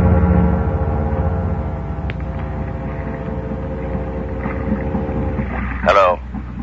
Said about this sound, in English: Hey, there's a speedboat coming over here.